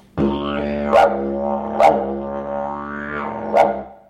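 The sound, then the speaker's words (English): A steady, buzzing didgeridoo drone with shifting tones, broken three times by sharp, yelping bursts that imitate prairie dog calls, with no talking. “Prairie dogs.”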